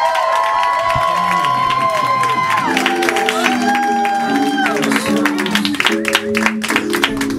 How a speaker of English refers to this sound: Okay, start clapping right now in a big way. Louder.